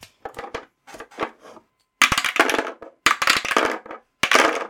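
Dice clatter and tumble across a hard table in several separate rolls, one coming up 20: a few soft rattles first, then three louder, sharper bursts of rapid clicking, with no talking.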